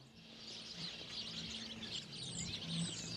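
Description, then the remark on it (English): A dense, continuous chorus of many small birds chirping and twittering together in one sidewalk tree at the corner of 33rd and Greenmount, steady throughout, over a low hum of city traffic. “A little nature preserve right here on the corner of 33rd and Greenmount in the way of one tree on the sidewalk full of birds.”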